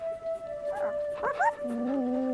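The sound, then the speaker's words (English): A dog, the pet Barney, whimpers with a few short, rising whines, then lets out a low, drawn-out howl over a steady humming tone in the background. “Come on, Barney, be a good dog.”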